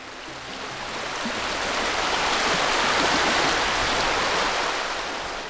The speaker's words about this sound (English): And you join us by the banks of the River Rye in North Yorkshire in Northern England. And that gushing, babbling and trickling, that endless flow you hear